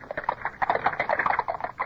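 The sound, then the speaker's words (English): Hooves of three horses pulling a carriage clip-clop in a quick, steady rhythm of sharp knocks as it moves off late in the day under threatening weather, moderately loud, with no voices over them. “Up, we're off again with only three horses, sir.”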